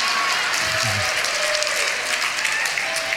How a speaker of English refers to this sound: See, here's the thing. No, they clap.